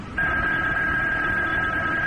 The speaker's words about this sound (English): And then the phone rang. I let it ring.